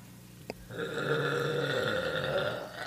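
human body sound, burp

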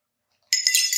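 household object, sipping water

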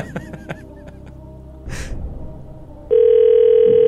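signal or alarm, telephone ringing

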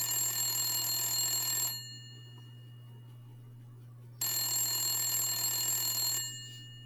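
signal or alarm, telephone ringing

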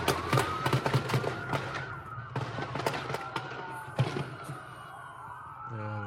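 impact, gunshots

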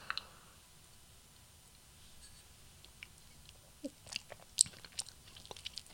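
food or drink, sipping coffee

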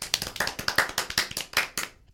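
crowd, applause

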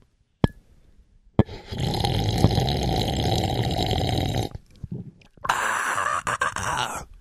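food or drink, sipping coffee

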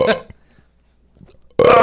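human body sound, burp

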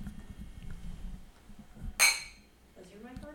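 household object, wine glasses clinking

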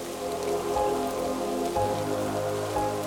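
nature, steady rain falling

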